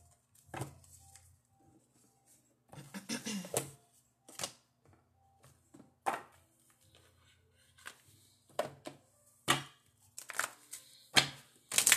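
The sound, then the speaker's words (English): A deck of love reading cards being shuffled: a quick riffling burst early on, then scattered sharp snaps and taps spaced a second or two apart, fairly quiet with no talking. “It's the shuffle for me.”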